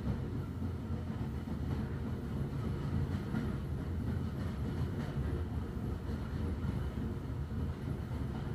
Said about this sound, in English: maybe the rhythms of the train over the tracks.